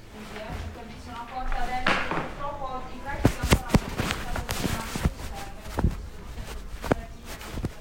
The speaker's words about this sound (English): Sorry about the muffling, it's in my back pocket. I'm walking. I don't really want to cut it out because it's so real.